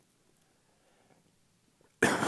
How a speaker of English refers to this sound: Sorry, I broke the limit. More coughs.